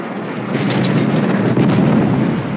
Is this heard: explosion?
yes